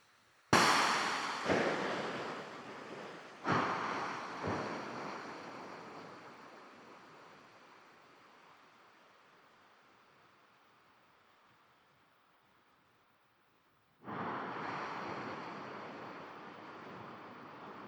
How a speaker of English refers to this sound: That sounded expensive. And am I right in thinking we're hearing the echo there? It is a single point implosion, and then that's it reverberating through the trench.